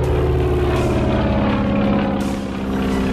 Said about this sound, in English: climbs into the cockpit, takes the controls, and taxis out into Lake Union, determined to perform the first flight. As the late pilot rushes up to the hangar, He's just in time to see Boeing turn the plane into the wind, gun the engine, and lift off.